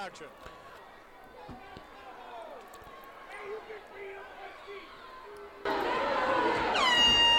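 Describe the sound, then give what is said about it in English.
Murmuring crowd noise at a wrestling arena gives way to a loud, sustained air horn blast, brought in by a spectator, that kicks in near the end and keeps blaring over the crowd. “Someone's brought a fucking air horn in.”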